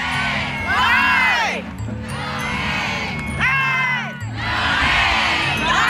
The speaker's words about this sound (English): Someone in our group decided we should let everyone else on the parade route know who we were with our very own cheer.